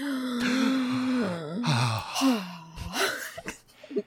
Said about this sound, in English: Judging by your gasps, I assume it's wonderful.